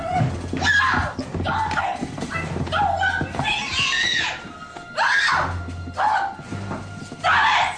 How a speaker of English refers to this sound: He goes, finds them. And it basically becomes screaming, screaming, screaming.